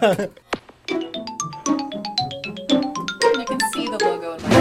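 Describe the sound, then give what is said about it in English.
A Nintendo GameCube startup sound: a quick, playful jingle of bright chiming blips and bouncing tones over a low hum, running a few seconds at moderate loudness. “I have a sound for you and for everybody else who knows what a GameCube is.”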